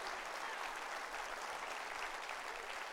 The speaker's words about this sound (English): Clap your hands real big, because that's the word.